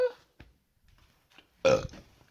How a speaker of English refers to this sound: Pardon me. Why does drinking water make me burp so damn much? Is there something going on?